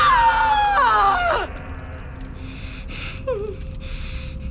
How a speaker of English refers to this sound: The tohunga pulls the baby to his arms as the mother screams and passes out.